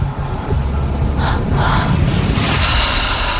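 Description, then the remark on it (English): Loud, heavy breathing: a few rough, airy breaths in uneven succession over a low, rumbling background, with no talking. “A lot of heavy breathing.”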